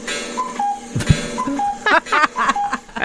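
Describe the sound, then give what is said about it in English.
A countdown clock ticks steadily, with short tonal beeps repeating every fraction of a second and a couple of sharper clicks, while a faint voice or tune murmurs underneath. “So we're waiting for the clock.”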